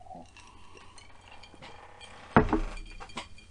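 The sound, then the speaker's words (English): A single sharp clink of glass rings out over quiet background noise as someone takes a sip of whiskey, trailing off briefly, followed by a few softer knocks and shuffles. “Man, I'm gonna take a sip of some whiskey.”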